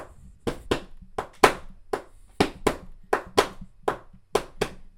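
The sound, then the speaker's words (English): About a dozen sharp hand claps in a loose, slightly uneven rhythm, each a crisp slap that fades quickly, with no voices over them. “you can do whatever kind of clapping that you want to do at this point.”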